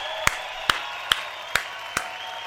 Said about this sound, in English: Stand up for that at least. Clap your hands.